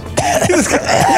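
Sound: cough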